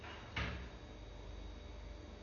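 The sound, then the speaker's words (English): A door bumps shut with a short, muffled thud early on, followed by quiet room tone and a faint second knock at the very end; no one speaks. “You don't have to close the door.”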